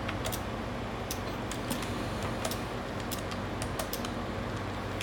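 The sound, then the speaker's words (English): Keys on a Braille display are pressed in a quick, irregular series of crisp plastic clicks, fairly quiet over a steady low hum, with no one speaking, as a one-chord command is tried to go to the previous item. “And that's what I'm going to use now to go to the previous item.”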